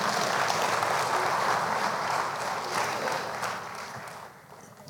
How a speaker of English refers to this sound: Yeah, it's okay to applaud for them because they're awesome.